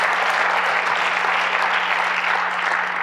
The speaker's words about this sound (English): If you believe that, why don't you clap your hands this morning?